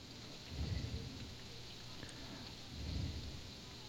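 A pot of red beans boils with a steady, hissing bubble, swelling twice into louder low gurgling rumbles before settling back. No one speaks.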